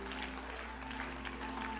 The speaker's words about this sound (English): Let's give the Lord a hand clap of praise. Hallelujah.